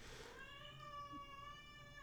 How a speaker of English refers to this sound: Did you guys hear that? Cat comes out going, meow!